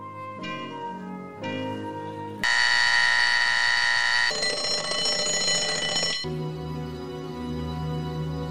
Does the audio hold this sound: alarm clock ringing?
yes